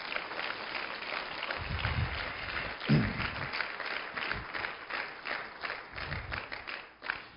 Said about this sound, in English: Give him a hand clap.